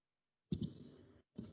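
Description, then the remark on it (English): Dice clatter across a hard surface: a couple of sharp clicks followed by a brief rattling tumble, a short pause, then another quick clatter. Crisp, with no talking. “But just because I rolled dice doesn't mean you need to be rolling dice.”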